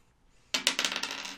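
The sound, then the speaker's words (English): A small die clatters onto a hard table, a sharp initial hit followed by a quick series of rattling bounces and rolls that settle within a second, fairly loud. “Do you have your dice near you? I do. I would like you to roll a d8.”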